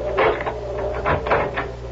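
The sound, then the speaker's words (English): A woman opens the main door of a house to let herself out, with a few muffled clunks and rattles of the latch and wood over about two seconds, against a low steady hum. “Starting with the moment when, after sneaking successfully past the door to her father's medical office, she is just about to let herself out the main door of the house when...”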